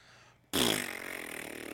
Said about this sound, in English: Yeah, like a long, slow, sad fart.